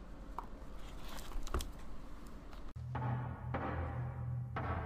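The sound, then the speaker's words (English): Low-pitched, buzzy beeps pulse on and off in short irregular bursts, like Morse code, following a stretch of rustling, crackling noise with scattered clicks. No one speaks. “That sounds like old Morse code.”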